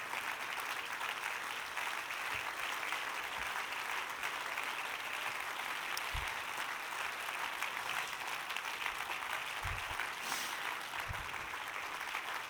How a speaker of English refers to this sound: Clap your hands to the Lord and stand with me this morning. Go ahead and clap your hands to the Lord as you stand.